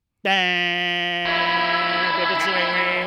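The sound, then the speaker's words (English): The loud, brassy Hot Mic horn, also called the My Bookie horn, blares as a sound effect. It is one steady, buzzy low tone held for nearly three seconds without a break and rich in harsh overtones. “All right, sound the Hot Mic horn, the My Bookie horn,”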